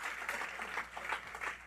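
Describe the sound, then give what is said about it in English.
A group of people claps steadily together as a little clap offering in tribute to honor a man, praising God. A dense, even patter of many hands carries on throughout at a moderate level, with no talking over it. “Would it be okay to give him tribute, to honor him with a little clap offering, praising God?”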